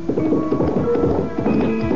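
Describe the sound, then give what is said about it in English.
Steady clip-clopping of a ridden horse's hooves at a brisk pace, fairly loud, with a faint sustained tone running underneath and no talking. “I looked in on my snoring cousin, breakfasted on black bread and brandy, and sat being my horse. Rode for the alchemist's isolated home.”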